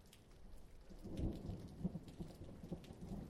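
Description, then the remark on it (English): Heavy, chilling mountain rain pours down steadily from a cloud over a tiny lane in a little village at night while a deep rumble of thunder rolls underneath, swelling around the middle and lingering low, with no voices. “The cloud, upon reaching me, opened up, pouring a chilling mountain rain down on me, drenching me in my robe, which clung to my skin.”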